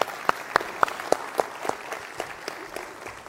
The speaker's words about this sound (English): let's give Grant a round of applause. Thanks, Grant.